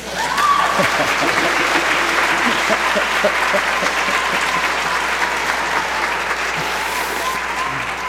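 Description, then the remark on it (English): An audience applauds steadily for about eight seconds at the mention of its calling a native of Colombia as associate minister in March 2010, a dense, even wash of clapping that holds at a fairly loud level before easing slightly toward the end. “And yes, that's an applause line.”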